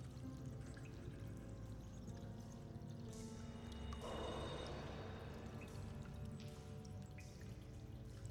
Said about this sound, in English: As they continued down the narrow walkways, the sound of moving water was clear, if not distant,